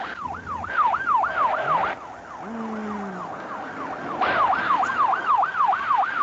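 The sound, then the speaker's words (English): A loud police car siren cycles rapidly up and down in a steady warbling rhythm, briefly fading mid-way before returning, over rushing road and engine noise, as the police car chases a vehicle at 80 to 90 miles an hour. “The siren, and they just paid no attention to it.”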